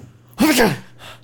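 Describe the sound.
A single sharp sneeze bursts out, loud and brief with a voiced catch, followed by a faint breathy exhale.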